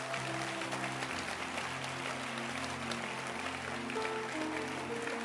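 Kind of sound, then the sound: crowd, audience clapping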